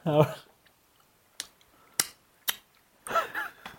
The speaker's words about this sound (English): I'm actually going to have one more. Okay. Let us know. Our fans like ASMR, so feel free to chew loudly.